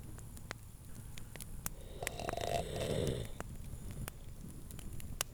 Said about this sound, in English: Soon, the exhausted bear was snoring in his armchair by the fire.